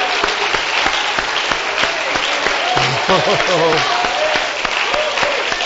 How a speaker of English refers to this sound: Let's clap our hands in victory tonight.